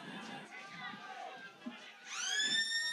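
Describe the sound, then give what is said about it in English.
A loud, sustained final siren blares suddenly over a noisy stadium crowd at a football match, its steady, harmonically rich tone starting partway through and holding to the end. “There is going to be a kick after the siren here.”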